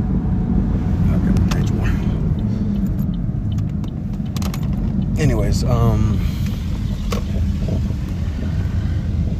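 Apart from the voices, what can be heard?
car interior noise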